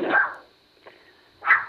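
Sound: dog barking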